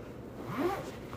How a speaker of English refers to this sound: Yeah, I'm going to put everything in like, I mean, it'll fit, it's just that. And then I just zipper this up.